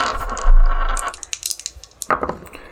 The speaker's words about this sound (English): Just roll percentage dice for me.